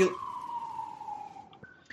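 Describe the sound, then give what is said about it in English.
An emergency vehicle siren wails outside, its steady tone sliding slowly downward as the vehicle passes, then a brief higher note begins. Moderately faint, with no one talking. “You have sirens there.”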